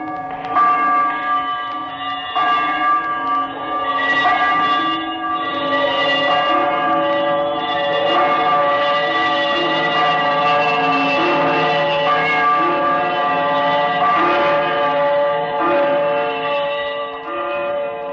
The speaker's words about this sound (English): As he turned, his glance happened to rest upon a bell, a disused bell that hung in the corner of the room. It was with great astonishment and with a strange, inexplicable dread that as he looked, he saw this bell begin to swing. Slowly at first.